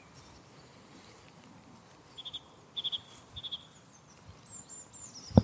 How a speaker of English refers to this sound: I'm not sure why the crickets are so noisy. I wonder if it is the hot weather, the dry grass, all these little creatures, grasshoppers, whatever they are, jumping about, making a racket. Must be signalling to each other that it's time to mate.